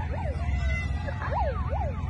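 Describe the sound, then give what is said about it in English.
A police car siren wails in fast, repeating up-and-down sweeps over a steady low engine rumble as police pull up after a woman crashes her car, loud, with no one speaking. “Then you hear the cops pull up.”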